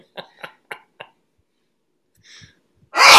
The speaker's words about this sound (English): I may sneeze. Oh, here we go.